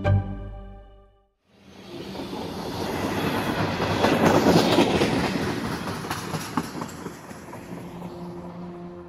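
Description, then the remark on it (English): A train on the railway in Laos, serving Luang Prabang, rumbles along the tracks with a steady rhythmic clatter of wheels, building to a loud pass, after a brief low hum and a moment of silence at the start. “But the train is proving to be a lifeline for Luang Prabang.”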